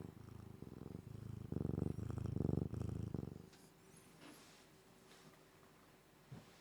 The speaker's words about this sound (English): She's purring, she's alright.